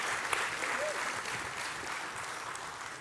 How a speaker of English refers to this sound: I don't know if the students will be able to hear you, but can we give them a little round of applause and thank them?